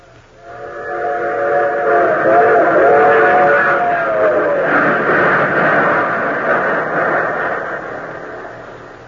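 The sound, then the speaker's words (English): A train rumbles steadily along the rails, its loud multi-tone whistle sounding for a few seconds early on, then the clatter continues and slowly fades away. “April 6th, 4:20 p.m., the colonel in question boarded train at Washington.”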